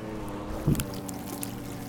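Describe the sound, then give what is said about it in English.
Water from the incoming tide laps over a tiny plastic raft covered in goose droppings in Worcester, with one soft splash standing out over a steady low watery rumble. Fairly quiet, with no one speaking. “We're getting the tide. The water is coming over our tiny.”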